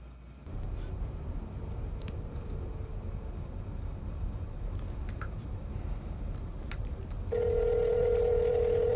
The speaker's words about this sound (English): Jeez, do we need the ringtone?